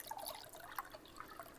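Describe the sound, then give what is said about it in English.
Homemade lemonade, made the day before in a kitchen, pours and trickles into a glass, a steady splashing stream with small bright drips and gurgles, heard alone without any talking. “That's some premium lemonade.”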